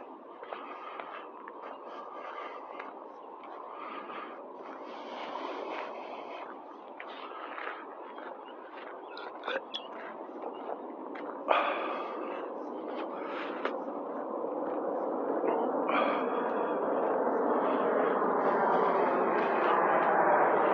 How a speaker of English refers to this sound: look at that private jet, the Gulfstream, taking off from a local airport here, Mercer County.